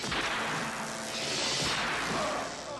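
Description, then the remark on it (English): A whip cracks sharply against a loud, dense wash of noise, harsh, with a few snapping hits over roughly three seconds. “Whip it good.”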